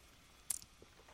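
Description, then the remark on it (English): A quick, soft sip from a dragon fruit drink: one brief hissy slurp followed by a couple of faint wet clicks, with no one talking. “And, you know, before I, you know, sign off for this week's edition of the podcast, I'm going to take another sip of the dragon fruit here.”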